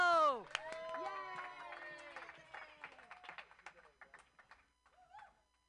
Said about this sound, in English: Clap your hands together for your last comedian of the night